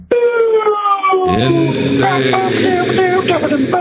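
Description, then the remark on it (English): A voice imitates the spacey synth soundtrack of a futuristic jet motorcycle video game with a long, sliding, siren-like tone that drops in pitch, then pulses into a busier, buzzing rhythmic pattern. Loud throughout. “The soundtrack was like all spacey, because you're basically in space.”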